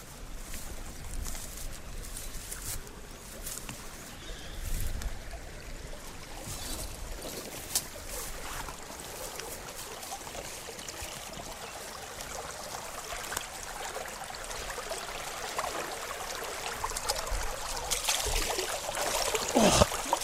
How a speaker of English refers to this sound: We're coming to the second site for suspending the piano tapes, the Sturt Creek. And there's quite a good flow in the creek.